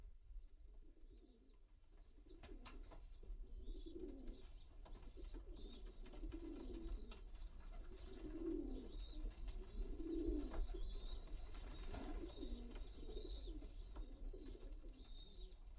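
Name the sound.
pigeons cooing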